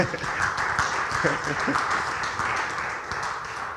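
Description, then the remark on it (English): An audience claps for Jesus Christ during a sermon in a dense, sustained burst of applause that holds steady throughout, with scattered voices calling out underneath the clapping. “You should clap for Jesus Christ.”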